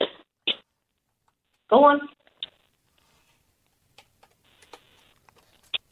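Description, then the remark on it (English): A pet crunching dry biscuits from a bowl holding a cup of biscuits: a few sharp clatters, then sparse, faint crisp crunches and clicks, with a brief burst of speech near the start. “can you just place the bowl down with a cup of biscuits in there and just let me listen to Simba do his thing”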